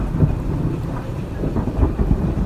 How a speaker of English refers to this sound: Just a bit more thunder there, and the lightning was literally about 3 seconds between it.